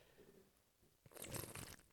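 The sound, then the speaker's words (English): A sip from a can of Bud Light beer: after a second of near-quiet, a burst of wet slurping and mouth noises lasts about a second, with no talking. “I need to take a sip of this drink here. That Bud Light.”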